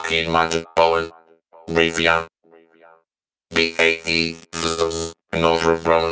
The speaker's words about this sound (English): Let's drop the track back down to minus 28 and let's put Echo Boy in bypass. Let's have a listen to what the robo voice sounds like with the Little Alto Boy effect but without the ping pong delay.